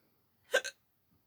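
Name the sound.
hiccups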